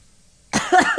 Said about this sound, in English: Sorry, I had to cough. Nobody noticed. It was very subtle.